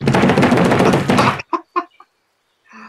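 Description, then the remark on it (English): Vigorous, rapid knocking on a closed door, done as a demonstration, hammers out loudly for over a second, followed by three quick separate knocks and a faint trailing sound. “I will knock vigorously. Should I demonstrate?”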